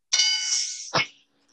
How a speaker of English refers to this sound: We didn't hear the buzzer as much. We didn't hear the buzzer as well. Better? No. Yeah, we heard that one. That one's pretty quiet. The buzzer's quiet, but we can tell it's buzzing. It's fine. The buzzer's quiet. I barely hear it